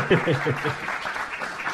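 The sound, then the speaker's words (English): A steady wash of crowd applause, played as a sound effect during a quiz after a correct answer, dense and fairly loud, continuing for the whole couple of seconds, with a voice briefly audible over it near the start. “I put the claps on first.”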